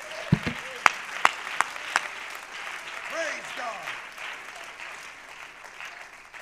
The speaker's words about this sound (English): Oh, clap your hands to the Lord right now. Go ahead and interrupt me. Go ahead. Clap your hands.